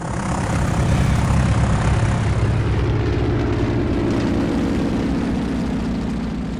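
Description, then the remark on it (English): A propeller airplane drones loudly and steadily, its rumbling engine filling the scene, then eases off slightly near the end as it moves away. No one speaks. “The last thing Inkfinga heard as he watched them fly away was the plane, who sang out, I will show you the end of the world, Lazy Leva.”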